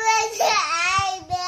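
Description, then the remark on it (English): A two-year-old girl wails and screams in a temper tantrum over an iPad, one loud, high-pitched, strained cry held for over a second, with a brief catch before it rises again. “posted her iPad temper tantrum on YouTube.”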